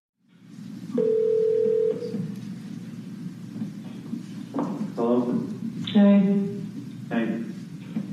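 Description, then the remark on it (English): A telephone line during a phone call a woman made to her husband: a steady electronic tone sounds for about a second over a low background hum, followed by short, clipped bursts that could be a ring or a muffled voice. “it doesn't explain why she wrote a letter confessing, nor the phone calls she made to her husband”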